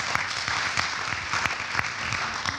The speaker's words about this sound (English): Go ahead. You can clap for that.